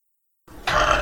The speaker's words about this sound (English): You should like collect all the little recorded burps and just put them into one at some point.